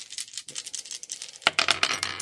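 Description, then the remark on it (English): Dice are rolled for a scrap check during a game, with an extra die for each pistol, landing on a 6. They rattle and clatter in quick, irregular clicks, first softly, then a louder burst of hard tumbling knocks about halfway through. No one speaks. “So scrap check, and I get an extra dice for each pistol, right?”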